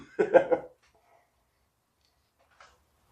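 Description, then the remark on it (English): A short burst of two or three quick coughs, fairly loud, followed by near silence and one faint little sound a couple of seconds later. “See? It gets me so mad I cough.”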